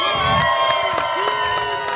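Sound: audience cheering and whooping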